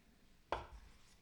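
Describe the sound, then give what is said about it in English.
One crisp knife chop lands on a cutting board, a short sharp thud that fades quickly, with quiet before and after. The knife is cutting through hard-boiled eggs. “El Chapo, the maestro, making quick work of the hard-boiled eggs and spreading them perfectly.”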